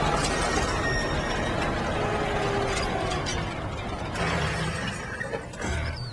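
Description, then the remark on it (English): In a film scene, a truck pulls up as Bill Pullman's character arrives at a car stopped at the side of the road with a flat tire: a steady, fairly loud low rumble with a gritty, crunching mechanical texture that holds for several seconds with no one speaking. “So obviously that's the truck pulling up.”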